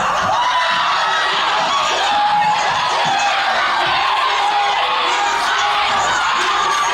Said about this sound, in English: But there's a lot of moments, to just summarize what that was. It's everyone screaming at once, which happens a lot in the show.